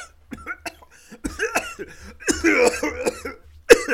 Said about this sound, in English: Yeah, that was a forced cough.